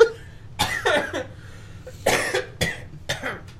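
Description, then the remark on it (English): A wet, phlegmy cough in a short cluster of bursts, followed by a couple more rattling coughs with brief pauses between them. “Oh, man, I just had a bunch of phlegm and coughed up.”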